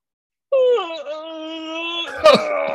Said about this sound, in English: In a few minutes, you might just feel like a bit of a yawn coming along, right? If you see other people yawn, you yawn.